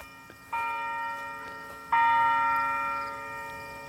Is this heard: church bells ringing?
yes